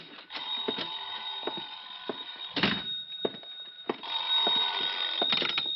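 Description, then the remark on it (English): A telephone bell rings in a long, shrill, metallic trill with a steady high tone, interrupted by several dull thumps and a brief dip before ringing on. No one speaks. “Oh, sorry. I think that's my phone.”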